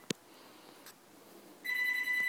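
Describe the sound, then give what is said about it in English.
A house landline phone rings once with a bright electronic warble after a couple of soft clicks, fairly loud, with no talking. “Okay, so, now see this time, this was the house phone, I'm house sitting, and that was the house phone ring, so at least this time I got the chance to pause.”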